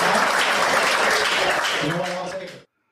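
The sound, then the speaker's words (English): A comedy show audience breaks into loud, sustained applause after a joke, a dense wash of clapping with some cheering voices mixed in, before it cuts off abruptly. “And you get a rock bottom applause break.”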